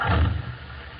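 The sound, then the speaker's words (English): A car engine roars to life with a deep, throaty rumble that swells briefly and then eases into a lower, steady drone, with no voices. “Start the car.”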